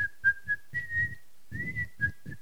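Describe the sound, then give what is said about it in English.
Someone whistles a short, lilting tune in a series of clear notes, accompanied by soft rhythmic low thumps, moderately loud. “He could have just waltzed all the way to heaven. Just whistled.”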